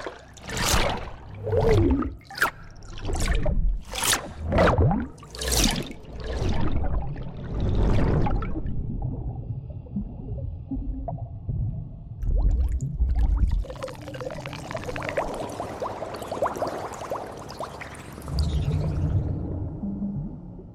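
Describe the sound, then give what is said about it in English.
Cinematic water sound design: a rapid series of sharp water whooshes and splashes gives way to a muffled, rumbling underwater texture, then a broader churning rush of water swells up near the end. “This unique toolset of water and underwater sounds includes 285 files with metadata.”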